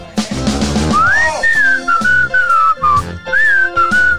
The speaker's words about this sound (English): This is the music that you hear when all systems are a go. We're almost to the part of where I start to whistle.